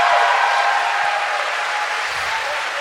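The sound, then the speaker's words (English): A live audience at City Hall applauds loudly and steadily, a dense wash of clapping with cheers mixed in, holding at a constant level for the full few seconds with no one speaking. “By the way, that was so loud that I think somebody next door is going to call the cops on City Hall.”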